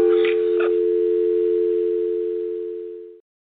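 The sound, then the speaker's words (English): After a brief click and rustle of a handset as the caller hangs up, a steady, loud telephone tone drones for about three seconds, then cuts off abruptly into silence. “Hang up the damn phone. No, no, don't you hang up on me. Don't you dare hang up on me.”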